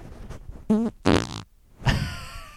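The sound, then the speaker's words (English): A series of loud fart noises: two buzzy, sputtering blasts in quick succession, then a pause and a final drawn-out, trailing fart that fades out. “Oh, I have a fart that might be funny.”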